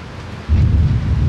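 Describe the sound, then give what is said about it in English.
A heavy storm roars with torrential rain, dense rain noise and a deep rumble that swells suddenly partway through, loud, with no voices. “Rain fell in raging torrents.”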